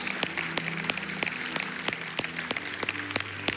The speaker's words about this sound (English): Come on, let's give God a round of applause for these three people today.